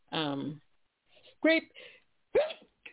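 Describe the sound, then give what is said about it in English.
Two short, sharp sneezes, each a quick voiced burst trailing into breathy noise, following a brief vocal sound at the start. “Bless you. Thank you.”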